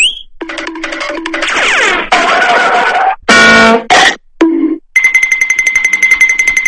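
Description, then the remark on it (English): A loud, rapid-fire string of meme sound effects: chopped tonal blips, a harsh buzzing burst, a sweeping whine, then a steady pulsing alarm-like tone. No one speaks. “Can you stop it with the fucking stupid-ass fine booms?”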